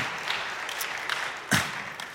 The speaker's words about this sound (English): I always love clapping in a Baptist church. There's like a brave first person. It's like looking around, and then like everyone else starts going, yeah, that's good, that's good.